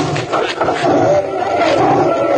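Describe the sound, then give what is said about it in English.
A small, emaciated, starved lion that is loose roars loudly, a rough, sustained growling roar that fills the whole two seconds with little pause. “The lion is loose.”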